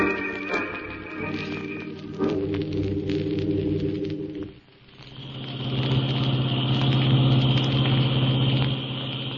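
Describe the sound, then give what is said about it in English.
A car engine hums steadily as the vehicle drives around a mountain, with a low droning tone that dips briefly midway, then swells louder and rougher, continuous with no voices. “We're losing time driving around this mountain.”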